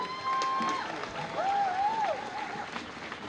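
A crowd breaks into steady, sustained applause, a dense wash of clapping with a few whistles rising and falling above it, holding at an even loudness throughout.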